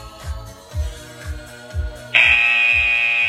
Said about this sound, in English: Ready? We're getting ready for the next run. This is run number 3. Just wait for that buzzer. We're going to go in 5 more seconds.